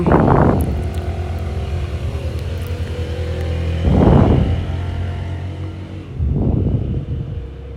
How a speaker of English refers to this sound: All this traffic. It does hurt me.